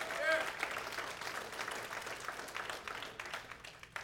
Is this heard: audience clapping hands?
yes